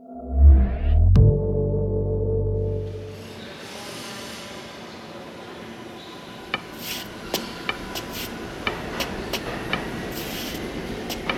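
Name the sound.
subway train pulling away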